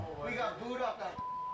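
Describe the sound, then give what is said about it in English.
Voices speak briefly, then a steady, high-pitched censor bleep tone cuts in and holds for about half a second at the end, as loud as the talking. “The version I have for you has no beeps in it, and it's way funnier.”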